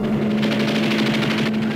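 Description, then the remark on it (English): Rapid machine gun fire from two white planes flying low over the water and strafing a yacht, a dense, continuous rattle of shots over a steady low engine drone, loud and sustained with no voices. “Very beautiful, really, until they open fire.”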